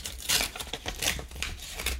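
A Christmas card envelope being torn open: a series of short, raspy ripping bursts in an uneven rhythm, crisp and papery with some crinkling between them, and no voices.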